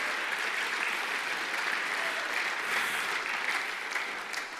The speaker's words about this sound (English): Clap your hands and praise Him in His house on a Sunday morning.